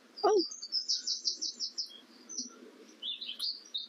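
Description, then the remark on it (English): Outdoor birdsong beside a paved path leading away from a road: a quick sliding call opens into a bright run of rapid, evenly spaced chirps, then a couple of shorter bursts, clear over a soft background hush. “Very pretty bird noises now as we're getting further away from the road.”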